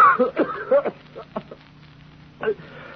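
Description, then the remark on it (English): A fit of short, rasping coughs, several in quick succession at first, then a few weaker ones and a final cough after a pause, moderately loud. “That blasted cough, what does it?”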